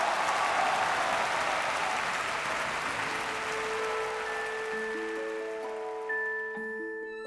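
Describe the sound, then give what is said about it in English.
A crowd bursts into dense, steady applause after a presentation on reptiles, slowly thinning out, while sustained musical tones rise underneath and take over toward the end. “The audience erupted in applause.”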